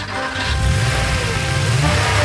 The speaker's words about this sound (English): It was the sound of a car starting up.